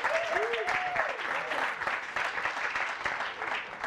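A group claps steadily in a dense, continuous round of applause lasting several seconds, with a few faint voices and whoops rising briefly above the clapping.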